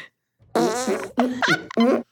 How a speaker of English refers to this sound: Here is a Fart A. And this is Fart B.